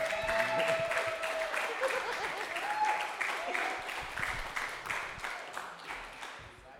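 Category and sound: crowd, comedy club audience applause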